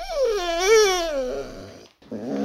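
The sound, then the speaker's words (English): A dog named Mr. Pupples lets out a long, wavering whine that rises and falls in pitch, breaks off briefly, then starts up again, fairly loud with no talking. “Thank you to my dog. Any closing thoughts, dog?”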